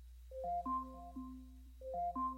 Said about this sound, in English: Alexa, alarm off.